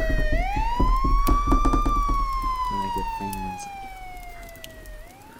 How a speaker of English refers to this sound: Let's get out of here before the cops come. Oh no, I think I hear sirens. Uh-oh. Ooh. Oh no, those aren't added in post. I hear the sirens.